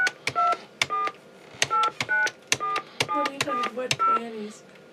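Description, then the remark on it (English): Touch-tone keypad dialing: a quick, uneven run of about a dozen short dual-tone beeps, each with a faint click, sounding clear as a calling code is punched in. “Please enter your calling code.”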